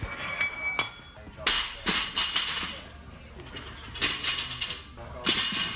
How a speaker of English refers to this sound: Well, the banging and crashing, you can hear the athletes at work at the South Australian Sports Institute